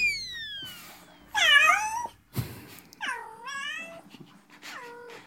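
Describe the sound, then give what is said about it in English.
Men's voices mimic a cat, letting out a series of drawn-out, wavering meows one after another, loud, with brief pauses between each yowl. “In case anybody was confused about what a cat sounds like, the guys are on it.”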